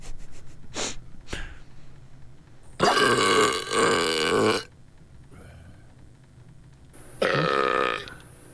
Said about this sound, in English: Oh, speaking of the world's loudest burp, here we go.